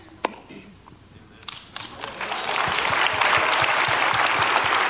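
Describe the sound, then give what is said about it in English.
An audience breaks into applause, starting with a few scattered claps and swelling within two seconds into steady, dense clapping that keeps building in loudness. “Clap for him, because that's all he's getting this morning.”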